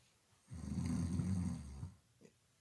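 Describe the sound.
A person fakes a single drawn-out snore, a loud rattling rumble lasting over a second, followed by a short faint breathy sound.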